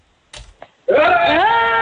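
A radio contest winner, calling in, lets out a loud, sustained whooping cheer over the phone to start the weekend, its pitch sliding upward, after a couple of brief thumps.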